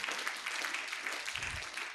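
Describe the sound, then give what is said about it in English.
A crowd claps steadily throughout in a church, a dense, even patter of many hands at moderate loudness, with no pause in the applause. “Oh, clap for your mother.”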